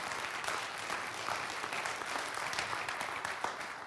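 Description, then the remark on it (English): Steady applause from an audience at a pastor's sermon, a dense crackle of many hands clapping at an even level throughout, with no voices standing out above it. “Now, I don't want you to clap for me.”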